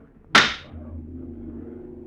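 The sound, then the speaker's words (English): A single sharp gavel rap by the President of the Senate calls for silence, cracking out loudly, then decays quickly into a low, steady droning hum of lawmakers that continues underneath. “The drone of lawmakers before the President of the Senate raps the gavel for silence.”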